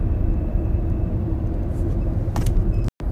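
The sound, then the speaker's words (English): A car braking with a steady, loud rushing-air noise inside the cabin over a low road rumble, the brakes not squealing, a brief brighter whoosh near the end, then a sudden short cut to silence. “I would step on the brakes, and it wouldn't even squeal. It would almost sound like air was passing through the cabin.”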